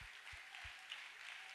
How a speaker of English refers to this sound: Would you give the Lord a hand clap? He's awesome.